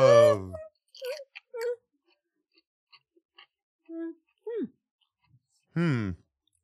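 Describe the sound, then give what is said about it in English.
Chewing of crunchy pickled okra, with soft wet mouth clicks and brief pauses, broken up by several murmured, voiced 'mm'-like reactions from the eater. “people will turn us off if we chew too much because they don't want to hear us eating.”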